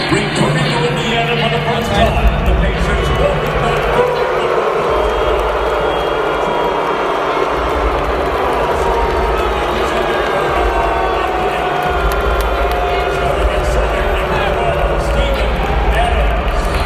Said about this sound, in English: Paul George was back. And not only was he back, but he also got booed. Let's listen to those boos that you could hear from my seat itself.